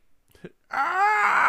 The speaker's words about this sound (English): Then he wanders outside and immediately screams in pain.